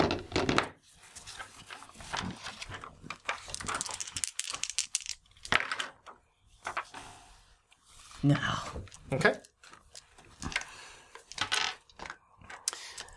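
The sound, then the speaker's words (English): Dice for a power roll in a game clatter and tumble across a hard tabletop in several bursts of sharp clicks and rattles, with brief bits of quiet speech between the rolls. “Make a power roll.”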